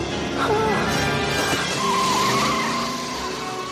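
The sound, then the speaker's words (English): A car engine roars to life after the driver hits the steering wheel with his head, then revs hard as the vehicle pulls away, tires squealing, loud, with what may be a voice faintly underneath. “hits the wheel with his head and the car starts.”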